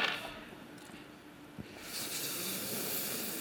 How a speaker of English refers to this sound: Yeah, roll a big pan full of dice.